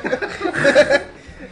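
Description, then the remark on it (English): A single sneeze bursts out in a short, loud, breathy blast with a voiced edge, lasting about half a second between quieter murmurs before and after. “Bless you.”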